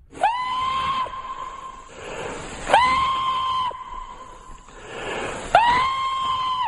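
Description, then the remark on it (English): Three long, loud whooping howls from a human voice imitating a Sasquatch (Bigfoot) call, as used in the woods to try to find Bigfoot, each rising sharply then held at a steady high pitch, with breathy pauses in between. “See, on that show, they go in the woods with a full camera crew, and they use techniques like knocking on trees, and they do what's called Sasquatch calls.”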